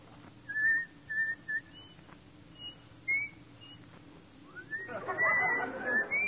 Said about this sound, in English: Let me hear you whistle coming through the rye.